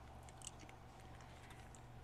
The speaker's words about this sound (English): And we're chewing. And let's see what's happening here.